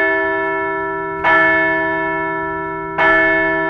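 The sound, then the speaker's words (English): A large bell tolls twice, about two seconds apart, each loud strike swelling into a long, humming resonance that keeps ringing between strokes. No voices are present. “Let's ring the bell for a rock-solid homestand.”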